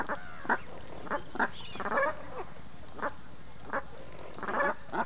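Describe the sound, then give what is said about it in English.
A small flock of geese honking, with a series of short, nasal calls at an irregular pace, some overlapping into a busier cluster, with no voices. “It wasn't long ago that I was walking down at the port of Siuslaw in Old Town Florence when I saw a small flock of geese.”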